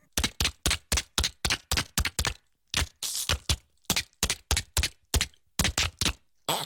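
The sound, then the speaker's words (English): A voice mimics a typewriter with rapid, crisp mouth clicks and clacks, about thirty sharp bursts in quick uneven runs separated by brief pauses, fairly loud with no talking. “You should watch his short film, The History of the Typewriter, where he does every single typewriter.”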